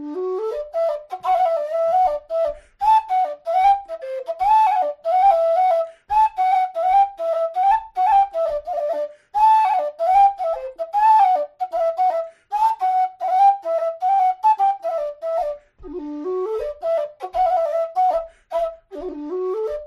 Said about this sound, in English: And here's another Walsh tune on whistle. This is The Mouse Trap. Again, this book is Caledonian Country Dances from 1748.